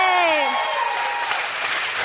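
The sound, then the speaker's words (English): An audience applauds in a steady, dense wash of clapping that holds at an even level throughout, with a brief falling vocal whoop or cheer at the very start. “Clap for Emily Heller, who's going to stay.”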